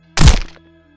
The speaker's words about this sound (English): As I screeched in fear, the stick figure dropped me to the ground with an almighty thud.